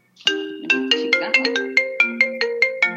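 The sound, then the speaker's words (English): A mobile phone ringtone plays a quick melodic tune of bright, plucked-sounding notes in a steady rhythm, about a dozen notes over a few seconds, clear with no talking. “Let me turn my phone off, sorry.”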